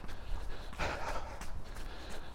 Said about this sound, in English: Garage doors rattling in the wind.